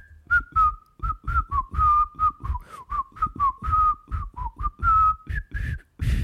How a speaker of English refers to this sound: I told you, I can't whistle very well. It's an oral treat for our listeners. A lot of air being blown into their ears.